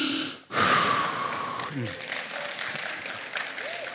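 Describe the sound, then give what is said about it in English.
After a brief pause, an audience bursts into steady, dense clapping that carries on evenly to the end, with faint voices and a short whoop or whistle mixed in, after a speaker recites the books of the Old Testament. “Don't clap.”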